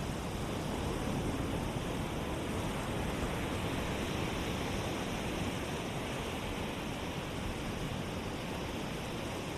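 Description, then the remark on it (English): A steady, continuous wash of surf as waves arrive on a beach and return to the ocean, holding an even level throughout with no distinct swells or voices. “Waves simply arriving on the beach and returning to the ocean.”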